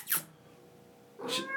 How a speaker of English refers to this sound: Plus, now we got a cat on the podcast. I want to hear this. She's got that look.